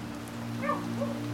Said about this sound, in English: not the dog barking. The dog will shut up soon.